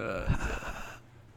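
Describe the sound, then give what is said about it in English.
A breathy rush of air blown straight into a microphone during a recording, with a muffled low thump from the breath hitting it, lasting about a second before dropping to quiet hiss. “This is breathing into the mic for the last 10 minutes.”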